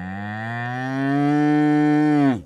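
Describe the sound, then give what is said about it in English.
A single long, loud cow moo in Texas, steady and droning for over two seconds before it drops off abruptly at the end, with no talking. “So when I got there in Texas, it was like nothing but big land and cows.”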